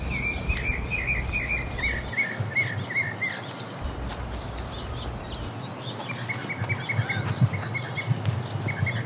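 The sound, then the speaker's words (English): Several bird species sing and chirp at once outdoors in a desert garden, about eight different songs, with repeated bright whistled phrases overlapping with higher twittering calls, steady over a soft background hum, with no talking. “I also cannot tell you how incredible the bird life here is in the desert. At any one time, I can hear about 8 different songs.”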